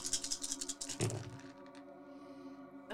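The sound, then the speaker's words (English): A handful of dice, rolled for a game's wits and awareness roll, clatter and rattle together in a quick flurry of small clicks, ending in a louder tumble before the clicking dies away. Fairly quiet, with no talking. “In fact, why don't you give me a wits and awareness roll? This is so fun. There's so many dice.”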